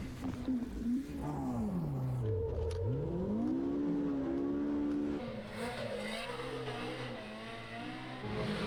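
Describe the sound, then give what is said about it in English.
A side-by-side off-road vehicle's motor roars loudly, its pitch dipping low then climbing back up as it revs, then holding a steady growl throughout. “How about the sound of that motor?”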